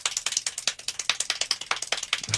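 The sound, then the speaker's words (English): Extremely rapid hand clapping in a world record for the most claps, 1,140 claps in one minute: a dense blur of sharp crisp claps at nearly twenty per second, so fast it almost sounds like a rattling ratchet, with no voices. “No, it's the world record for clapping the most amount of times.”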